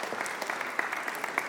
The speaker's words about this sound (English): Okay, it definitely deserves a round of applause.